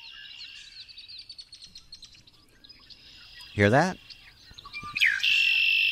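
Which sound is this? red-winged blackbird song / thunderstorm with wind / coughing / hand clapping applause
red-winged blackbird song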